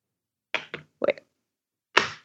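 A small backlit keyboard case snapping into the bottom of an iPad with strong magnets: a handful of sharp, solid clacks in an uneven sequence, including a quick double snap, with a final firmer click. No talking.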